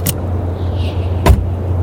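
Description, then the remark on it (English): A car door opens with a soft clunk, then slams shut a second later with a solid thud over the steady low rumble of a car idling at the curb, as a man gets out. “He got out of the car and walked toward Junior's apartment.”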